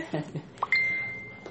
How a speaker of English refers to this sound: Oh, I forgot to put the do not disturb. Don't worry. Yeah, never mind. Ignore the beeps.